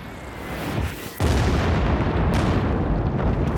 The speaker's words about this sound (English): On the night of March the 18th, 48 of the 60 B-52s are diverted into Cambodian airspace. For those on the ground, the roar from the approaching planes is deafening. A complete assault on the senses.